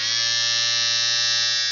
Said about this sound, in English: What year, within 5 years, did the electric shaver go on sale for the first time?